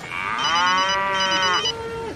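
A single long, drawn-out sheep bleat on John Farnham's farm, loud, holding steady for nearly two seconds before trailing off into a lower, fading tail. No one speaks.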